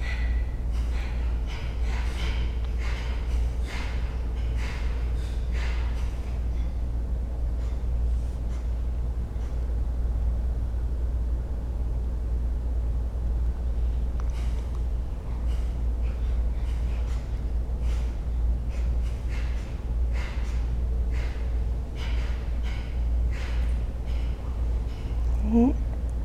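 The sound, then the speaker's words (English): Deep recovery breaths drawn in and pushed out again and again between rounds of a breathing exercise, in an uneven series of sharp, airy pulses over a low, steady background hum. “Then several recovery group breaths and begin again.”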